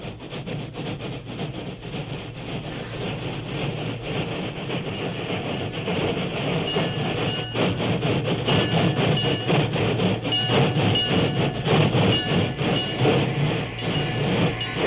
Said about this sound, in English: Kimasabi, train come.